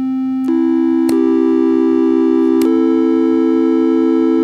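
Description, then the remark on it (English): A steady, buzzy synthesizer oscillator triangle-wave tone, selected with a knob, holds a low pitch, then jumps upward in three small steps, each change marked by a faint click. No one speaks. “Waves, and then I can use my little knob here and go to triangles.”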